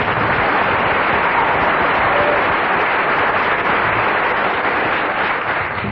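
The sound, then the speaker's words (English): An audience at an improvised comedy show applauds loudly and steadily for a member of a performing quartet, a dense wash of many hands clapping at once that holds at full strength for several seconds without letting up. “I must invite you to give a huge round of applause to the only member of the quartet who didn't get a single laugh throughout.”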